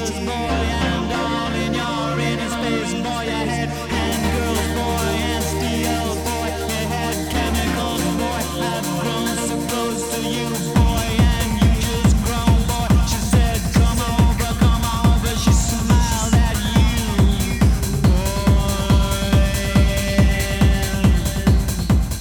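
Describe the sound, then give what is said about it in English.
A 1990s electronic trance track used to soundtrack a film scene: shimmering, sustained synth keyboard chords swell for about ten seconds, then a pounding, steady kick-drum beat drops in and drives on beneath the layered synths. “It starts with glistening waves of trance keyboards and escalates from there.”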